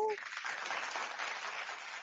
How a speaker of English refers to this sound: Ooh, I like that applause.